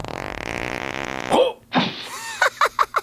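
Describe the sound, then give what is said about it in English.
A long, loud, buzzing fart rumbles for over a second, then cuts off, followed by a short whooshing burst and a few quick, clipped sounds. “He farted.”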